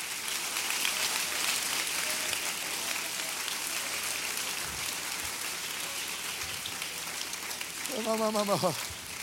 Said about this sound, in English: I wish somebody would clap their hands and thank God for the oil.